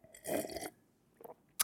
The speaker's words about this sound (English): And so I drink the decaf iced tea, and then I drink my water with lemon in it, like this.